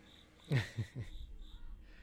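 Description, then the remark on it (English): A cricket chirps faintly and steadily in the background, picked up by the microphones, a thin high trill running throughout, with a few brief low thumps early on and no talking. “This guy's always inviting a cricket. It's annoying as hell. And it picks up on the microphones now, too, since we got good ones.”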